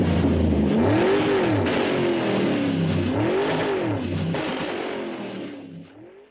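A car engine revs repeatedly in rising and falling surges, loud, then fades away as the vehicle pulls off.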